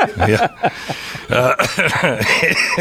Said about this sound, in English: The perfect exclamation point to that was you coughing.